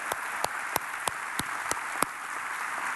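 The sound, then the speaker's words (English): An audience in Mount Pleasant applauds armed forces service members in thanks. The dense, steady roar of clapping has a few sharp, evenly spaced claps standing out in a quick rhythm above the wash. No one speaks. “So here in Mount Pleasant, across all of our campuses, let's give them a little bit more rowdy, thankful, appreciative applause.”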